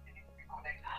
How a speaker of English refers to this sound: Eish, it's so bad when people try to call and then you receive and it's reconnecting.